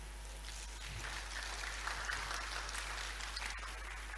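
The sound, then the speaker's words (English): Steady applause from a large crowd, many hands clapping continuously, a dense crackling wash that holds evenly for several seconds with no speech over it; the audience is clapping for people in the food business who run restaurants and prepare food. “Please clap for them.”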